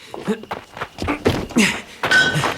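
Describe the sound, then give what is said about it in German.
Window glass is smashed in: several heavy knocks and thuds, then loud, crunching breakage with a brief bright ringing, scattered irregularly over a couple of seconds. “Vorsicht beim Reinklettern. Hier liegen Scherben.”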